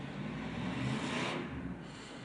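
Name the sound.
car passing by outside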